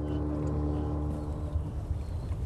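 A boat coming down from Inchigill drones steadily on the water, a low humming rumble with a constant loudness throughout, with no talking over it.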